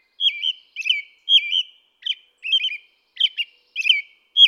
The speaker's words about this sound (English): During the day, an American robin sings a lovely, familiar song of rich phrases. The phrases vary and ring forth with a lilting quality.